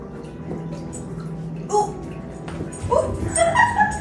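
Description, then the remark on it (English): A dog gives a short high whimper, then a rapid string of thin, squeaky yips and whines, over a low background rumble with some running water. “Okay, make sure your dog doesn't eat it.”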